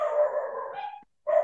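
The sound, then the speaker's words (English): Dogs bark loudly at the front door, a drawn-out, sustained bark followed by a short pause and then another sharp bark. “They're barking at the front door.”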